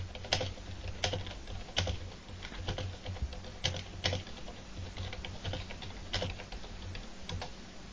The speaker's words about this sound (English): Sure, it's going to be fun editing out all the typing sounds.